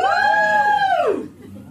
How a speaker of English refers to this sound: Give me a cheer if you're a Slytherin.